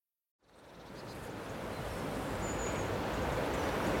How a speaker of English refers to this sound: I'm out walking the dog on a very still autumn day, and that gentle roar you can hear is the River Usk. Some rapids, it's boiling and brown, a very far cry from its gentle, clear waters of summer when we swam here.